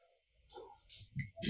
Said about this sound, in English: Sorry, I'm just going to have a sip of water.